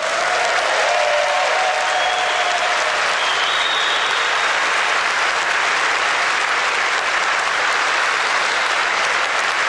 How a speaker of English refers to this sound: I have no idea who those people are who are cheering for him right now, but it's just one of those things where, you know, he would go on to make claims. I think it's sound effects.